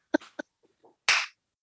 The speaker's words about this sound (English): That is the golf clap of the week. That's the golf clap of the week.